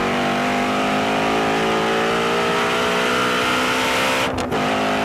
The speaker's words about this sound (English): I have to say, I am a really big fan of the new Mustang GT350R. The flat plane crank makes the thing sound like an exotic car. I mean, it just screams. It's so sexy.